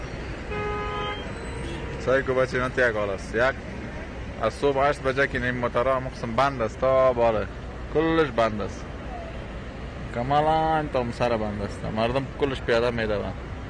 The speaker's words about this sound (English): That is a massive traffic jam in Kabul, Afghanistan. People rushing to the airport or just out of town to try and flee across the border, based on reports that the Taliban have entered the city.